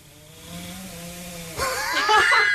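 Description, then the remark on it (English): Linus, a sleeping bulldog, snores, a low droning rumble that swells midway into a loud, raspy, rattling snort with whistly overtones, continuing harsh and steady to the end. “You can't ask a bulldog to not snore.”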